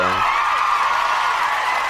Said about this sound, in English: Oh yeah, that deserves a round of applause right there. Let me get a round of applause for myself.